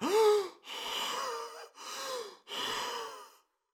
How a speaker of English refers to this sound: Henry fell back, holding his chest, gasping for air.